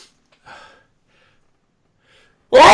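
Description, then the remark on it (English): A soft gasping inhale, a pause, then a single loud, explosive sneeze bursting out at the end. No talking. “I can feel a massive sneeze coming on.”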